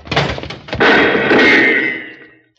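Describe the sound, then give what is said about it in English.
A door is burst open as people go through it fast: a heavy thump, then a louder crash that rattles and splinters, with the noise dying away over a couple of seconds. Loud, with no voices. “When I give the word, we'll go through this door fast.”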